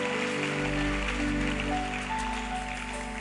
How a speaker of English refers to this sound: Why don't you give the Lord a mighty clap offering?